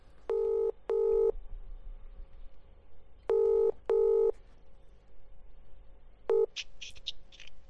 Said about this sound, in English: Someone's actually ringing me.